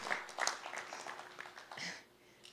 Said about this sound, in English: Give him a hand clap because he's not a god.